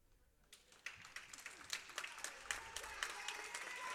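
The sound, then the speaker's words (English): A crowd at a basketball game breaks into applause after a brief quiet moment as player Stevenson checks out of the game with 12 points; dense overlapping claps build and hold steady at a strong level, with a hint of cheering underneath. “He gets a big round of applause.”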